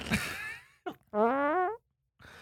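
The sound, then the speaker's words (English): A loud fart: a raspy burst, a short sputter, then a longer wavering, buzzy toot about half a second long, and a brief final puff after a pause. “I think I farted in the middle of that joke.”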